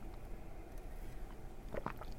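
Quiet mouth sounds of someone sipping water, with a brief cluster of small wet slurps and swallows near the end over a low background hum. No one speaks.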